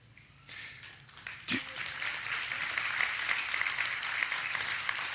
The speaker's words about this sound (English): Husbands, I hope that wasn't you clapping.